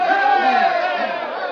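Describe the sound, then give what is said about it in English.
A crowd of Indian villagers cheers as Miyakut is marched into the village in handcuffs, a loud, sustained roar of many overlapping voices, steady for the whole moment with no single speaker standing out. “When Miyakut was marched into the village wearing handcuffs, the Indians broke into a cheer.”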